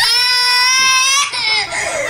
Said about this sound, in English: Have you ever had to hold a phone conversation with a screaming, crying child in the background?